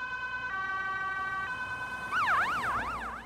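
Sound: ambulance siren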